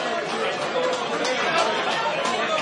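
A steady wash of crowd chatter in a pub, where a huge crowd has gathered to support competitors, many overlapping voices blending into a dense, continuous murmur with no single speaker standing out, holding an even loudness throughout.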